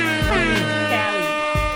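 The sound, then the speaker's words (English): Loud, brassy air horn blasts come in quick succession, a few blaring tones running into each other over under two seconds, with no voices. “Let me hit one more air horn for you, one for me.”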